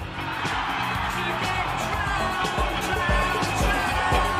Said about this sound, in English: They're applauding the DJ. Not the music, not the musician, not the creator, but the medium.